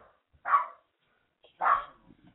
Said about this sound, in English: We're trying to get this dog out of the studio.